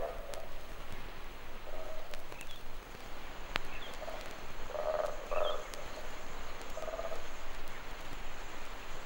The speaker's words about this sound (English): There's a tropical boo-boo shrike calling there. Colobus again.